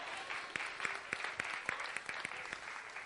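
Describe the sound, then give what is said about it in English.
A round of applause from a small crowd for a team of children and adults who made a creature: steady, quick clapping with sharp individual claps popping out every fraction of a second, moderately loud and with no voices over it. “Give this team a round of applause.”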